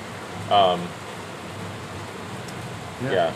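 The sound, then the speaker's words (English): Heavy rain pours steadily onto a garage roof, a dense, even hiss filling the whole stretch, with two short bursts of a person's voice near the start and end. “I love being here in the garage in the rain. I don't know, it's something pleasant about it. But this is a lot.”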